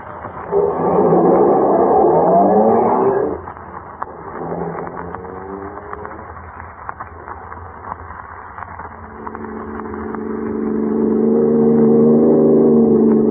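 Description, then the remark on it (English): A car engine roars loudly as it accelerates, drops to a lower steady hum for several seconds, then builds again with a rising, swelling drone. No one speaks. “They've got a fast car, but we're stepping right along.”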